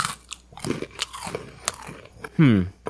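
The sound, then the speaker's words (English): Someone bites and chews chicken and a biscuit crackers with cream pulled off a Dunkin' Donuts Oreo sandwiched between them, giving a run of crisp, irregular crunches, followed by a short, loud, low voiced hum near the end. “And, I got it between my chicken and a biscuit crackers. Down the hatch.”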